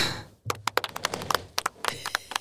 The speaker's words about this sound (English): Round of applause. Thank you. Thank you very much.